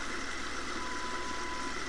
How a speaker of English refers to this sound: You hear that? That's the river rushing by my house.